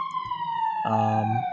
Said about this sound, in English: He's picking up every decibel of that siren. Dang, we gotta leave a review on this Blue Yeti, because I feel like it's supposed to only capture my voice and not the ambulances blaring outside.